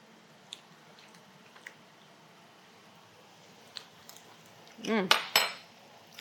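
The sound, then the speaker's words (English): Pasta being stirred in a pan: a few light clinks of a utensil, then a louder burst of scraping and squishy sloshing near the end. No one speaks. “Stir or shake. You can do either one.”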